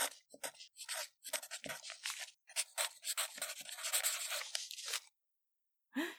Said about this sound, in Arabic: فوجد على مكتبه قلما ممضوغ الرأس قديما. هز رأسه بأسف وتنهد ثم تناول القلم وراح يكتب ويكتب.